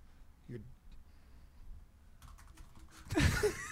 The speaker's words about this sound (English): What are you typing? Send a quick email.